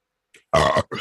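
A loud, close burp rumbles out after a brief faint sound, then cuts off and is followed by a shorter second belch.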